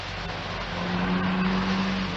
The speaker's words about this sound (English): That car, did you hear it? What car? It was as if someone was signalling.